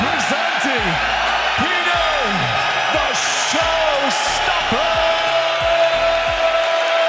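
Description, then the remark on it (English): A big crowd of MMA fans at a Bellator show at the 3 Arena in Dublin roars continuously at a loud, steady level while scattered fans let out rising and falling whoops and woos, one drawn-out cheer holding a steady pitch toward the end. “There's truly nothing like it, and after a year without it, I'm more grateful than ever to hear fans going wild at live shows, even if I have to occasionally endure a round of woos.”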